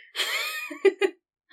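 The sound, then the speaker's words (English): A sharp, drawn-out gasp, breathy and rising in pitch, followed by two quick throaty catches of breath. No one speaks. “Gasp!”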